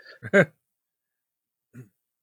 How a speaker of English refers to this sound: Actually, I got to clear my throat. Hang on.